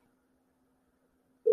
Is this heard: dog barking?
no